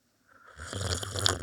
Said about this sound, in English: Now here's my slurp. Okay.